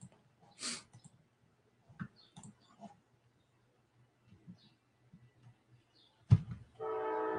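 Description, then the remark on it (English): A train rumbles low and steady, with scattered clanks and thumps, then its horn blares loudly in a sustained, harmonic blast near the end. “Here comes a train.”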